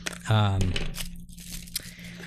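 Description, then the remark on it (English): Tissue paper crinkles and rustles in short bursts during the unboxing of an LOL doll, while a voice starts with a drawn-out, sing-song sound and keeps talking over the papery noise. “LOL also has like the cutest tissue paper.”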